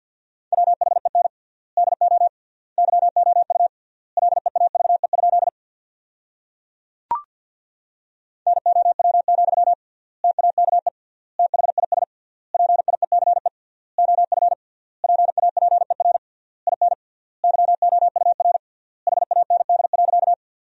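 Morse code practice tones sent at a fast 50 wpm with 3x word spacing, sending sentences built from the top 400 words: a single steady mid-pitched beep keyed in rapid dits and dahs, grouped into words with short pauses, plus one sharp click partway through.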